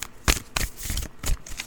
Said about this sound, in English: Let's go ahead and pull ourselves a card for today. All right, so we're just going to get started with a shuffle.